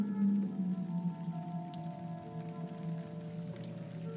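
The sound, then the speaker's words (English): Light rain patters steadily on a tin roof on a warm, humid October night, a soft continuous drizzle of tiny taps with no voices, backed by a low sustained hum throughout. “There was a light rain on the tin roof, and it was expected to rain the rest of the night.”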